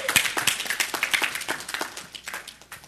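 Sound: audience clapping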